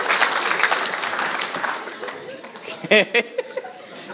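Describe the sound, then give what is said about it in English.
A crowd applauds a woman's acted-out scene with dense, steady clapping that gradually thins and fades, followed by a few brief voices and scattered laughter near the end. “Clap for her.”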